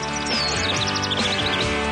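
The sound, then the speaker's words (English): Quick, high-pitched bird chirps repeat in a steady, fluttering series in a radio studio, layered over a sustained, humming tonal backdrop that stays fairly loud throughout. “The birds are chirping in studio.”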